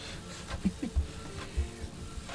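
printer printing

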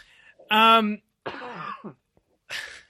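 sneeze

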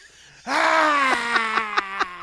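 baby screaming

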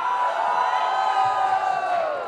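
audience shouting and cheering

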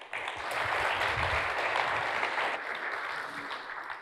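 warm round of applause

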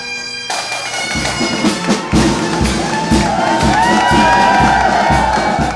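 crowd cheering

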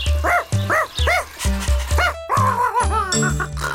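dog barking

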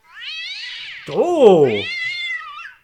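cat meowing loudly

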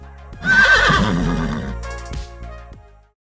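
horse neighing

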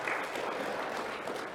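audience round of applause

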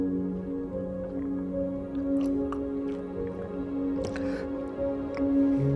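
person drinking water

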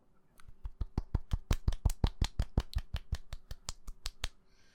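soft golf clap

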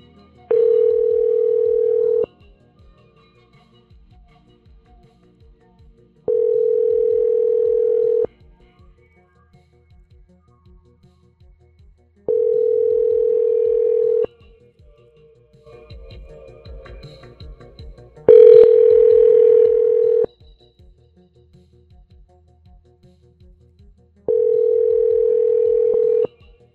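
telephone ringing

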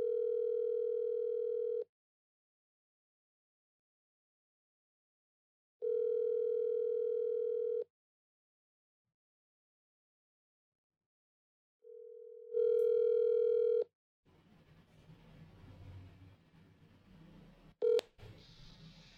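phone call ringing tone

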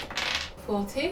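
percentile dice being rolled

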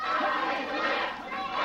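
wrestling crowd chanting

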